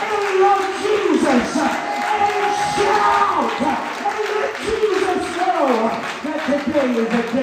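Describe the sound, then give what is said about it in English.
A large church audience shouts yes and cheers together, many overlapping voices rising in a loud, sustained roar that swells and ebbs for several seconds, with a mix of clapping and exclamations. “Do I got anybody that can shout yes?”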